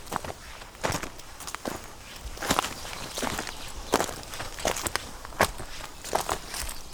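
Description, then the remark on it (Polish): Steady footsteps walking along a mountain trail, each step a crisp, crunchy scuff landing roughly twice a second at a moderate level, with no voices over them. “Idziemy dalej. Idziemy.”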